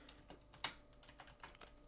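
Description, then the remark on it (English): Rapid keystrokes clatter on a computer keyboard as someone looks up a name, a quick run of light taps with one sharper, louder click partway through, with no talking. “You're gonna hear me typing on my keyboard and clicking.”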